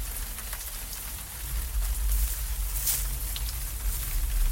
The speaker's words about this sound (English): What was that? I think it was just the rain. No, I heard movement.